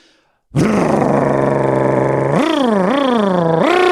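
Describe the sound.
A man imitates a loud modified car muffler with his voice: a harsh, buzzing drone that holds steady, then rises and dips in several quick revving swells before ending.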